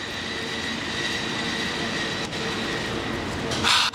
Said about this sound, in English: San Francisco, those are your cable car sounds.